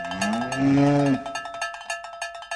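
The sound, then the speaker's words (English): A cow lets out a deep, drawn-out moo while a cowbell clanks steadily, and the bell keeps ringing in a quick, uneven rhythm after the moo fades. “Here's a cow that will not end up at Prem Meats.”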